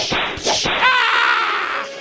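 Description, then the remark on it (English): Three sharp, whip-like snaps crack in quick succession as kids snap each other with ties in a tie fight, loud, then a drawn-out vocal cry rises and trails off. “Kids would all gather around, watch the tie fight. Snap! Ow! Snap!”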